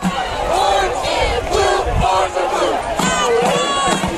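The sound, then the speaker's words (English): A crowd at an Auburndale Bloodhounds football game chants and cheers in loud, rhythmic bursts of many voices, rising and falling steadily for several seconds with no single voice standing out. “Were you just doing a cheer? I was following the cheer.”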